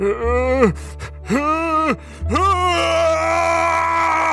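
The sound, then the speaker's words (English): A man screams as he tears a head of lettuce into two even pieces: three strained, wavering vocal cries rise and fall in pitch, the last one stretching into a sustained wail over a rough, crackling tearing texture. “And the sounds of tearing lettuce mix with the sounds of his screaming voice as he tears it into 2 even pieces.”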